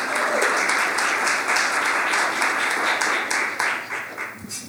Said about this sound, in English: So please join me in thanking our sponsors once more and welcoming our great panel with a round of applause.